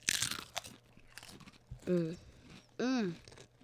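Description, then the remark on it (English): Crisp crunching of potato chips in a short burst at the start, a few softer chewing crackles, then two drawn-out voiced murmurs from someone eating. “Three, two, one, eat.”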